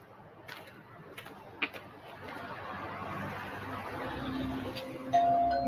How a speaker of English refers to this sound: Legere rang the doorbell